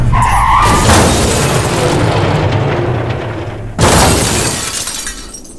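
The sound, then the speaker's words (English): A van skids and swerves on a patch of ice after the driver hits the brakes, with a long, loud tire screech and rumbling, then a sudden second burst of noise like a crash or impact near the end, without speech. “We hit a patch of ice, and instinctively he hit the brakes, and we began to swerve.”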